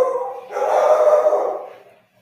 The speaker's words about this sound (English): Yeah, the dogs are pumped for this. Do you hear that? Yeah. Oh, my God. They are pumped.